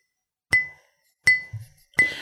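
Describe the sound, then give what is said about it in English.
Three sharp taps on glass, each a bright ringing clink that fades quickly, spaced roughly evenly apart with a brief muffled knock between the second and third: a finger of a partially decomposed skeletal figure rapping on a glass enclosure. “And as it does so, one of the fingers is kind of just rapping on the enclosure.”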